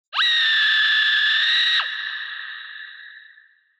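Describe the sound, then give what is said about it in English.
A woman's single high-pitched screech played from a laugh machine when one of its keys is pressed, loud and held steady for about a second and a half before cutting off, leaving a ringing, echoey tail that fades away. “He pressed one key, labeled Tanya, and a woman's high-pitched screech soared out at him.”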